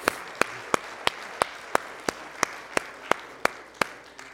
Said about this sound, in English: Yeah, come on, give Him a hand clap of praise, would you please?